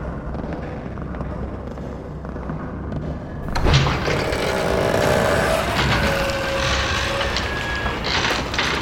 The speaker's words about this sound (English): You guys hear that? Sure did. Sound like a door opening way down yonder.